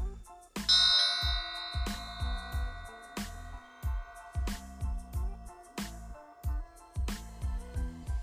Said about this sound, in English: I do have a bell here. I'm going to ring this bell, and this is just to clear the energies to get you in a more relaxed state, okay? So you can really soak in these affirmations. So here we go.